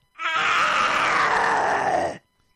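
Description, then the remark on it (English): A person imitates a phlegmy dinosaur roar, a single sustained, rasping, gurgling growl lasting about two seconds. It is loud and harsh, with a wet, throaty texture, and no other sounds accompany it. “A dinosaur with phlegm.”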